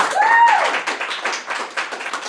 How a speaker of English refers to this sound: For those watching, if y'all didn't clap, I'm going to clap. Everybody clap, please.